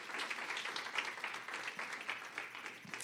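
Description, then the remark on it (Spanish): A crowd of people applauds loudly for God, a dense, continuous patter of many hands clapping at once with no clear rhythm, holding at an even level for the whole stretch. “Si hasta aquí, déselo fuerte el aplauso, yo no lo voy a interrumpir porque es para Él.”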